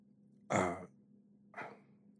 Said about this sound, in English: He blowing his nose. Can you imagine how much snot is in that tissue? Just the whole history of Jerusalem coming through his nostrils.